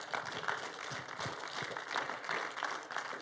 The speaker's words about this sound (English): And we do that around here by just clapping for you.